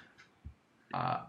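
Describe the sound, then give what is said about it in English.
A short, loud burst of crackling static hiss on the audio line fills the last half second, preceded by a soft low thump and faint background noise. “Oh, can you guys hear static? Yes, I can.”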